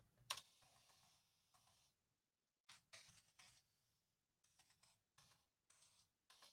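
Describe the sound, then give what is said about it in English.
Quick clusters of clicky keystrokes on a new computer keyboard, typed in short bursts with brief pauses between them, fairly quiet, with no one talking, as someone types the city name San Francisco. “And I got a new keyboard.”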